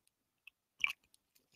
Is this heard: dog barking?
no